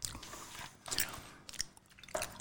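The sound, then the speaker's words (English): Crisp, dry crunching of roasted crickets being chewed, with several irregular bites bursting out in sharp bright clicks over a low mouthy chewing texture, fairly quiet and with no talking. “And I have cricket legs in my mouth.”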